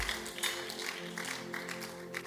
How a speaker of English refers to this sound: Give the Lord a mighty clap offering. The way you are clapping, I'm suspecting you.